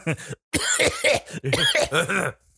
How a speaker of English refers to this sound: Oh, I'm going to cough during this, but we're more than 6 feet away. Don't worry.